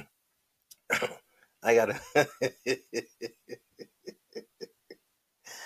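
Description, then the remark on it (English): Loud throat clearing from one person: a couple of harsh rasps, then a long run of quick, evenly spaced guttural pulses that shorten and fade, almost like a chuckle. “Let me clear my throat.”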